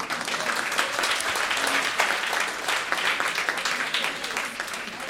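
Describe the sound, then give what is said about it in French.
An audience in the hall applauds the supporters and subscribers of Canada Land, with dense overlapping claps forming a continuous bright wash of sound that holds at a fairly even level for several seconds, with no one speaking over it. “Et on est dans la salle, on va les applaudir.”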